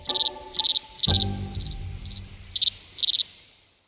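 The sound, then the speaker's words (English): A male insect less than half an inch long makes its mating call by rubbing its genitals against its abdomen, at around 99 decibels. The call comes in loud, high-pitched pulsed bursts, about seven rasping chirps repeating at a steady rhythm, with a low thump partway through and no voices. “And the males make this sound, 99 decibels, by rubbing its genitals against its abdomen.”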